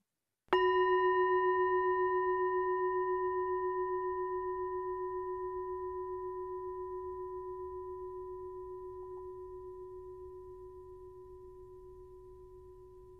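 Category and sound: signal or alarm, gong ringing and fading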